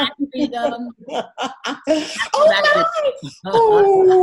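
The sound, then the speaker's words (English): A female Pomeranian puppy whimpers and then lets out long, wavering howls, its drawn-out whines rising and falling over the last couple of seconds after a burst of lively voices and chuckling. “This is my new puppy. Oh, Miss Freedom. Pomeranian.”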